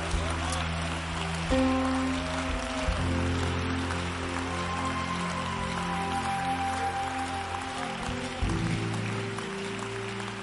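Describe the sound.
An audience claps loudly and steadily, a dense, continuous wash of applause lasting throughout, with sustained low musical tones and voices running underneath.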